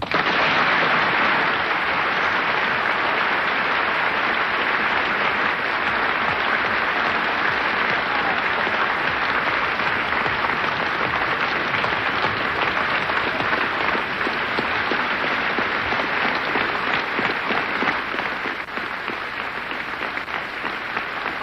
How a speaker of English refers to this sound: tremendously moving moment now. The whole of the Union standing and applauding this magnificent speech of James Baldwin. Never seen this happen before in the Union in all the years that I have known it.